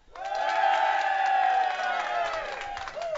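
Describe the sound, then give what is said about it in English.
A large crowd at the Minnesota State Fair, gathered in front of the stage in the morning, cheers and shouts loudly and steadily for a few seconds, a dense wash of overlapping voices, whoops and high yells with no single speaker standing out. “This is the crowd in front of us.”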